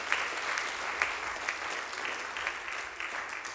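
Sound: audience cheering and applause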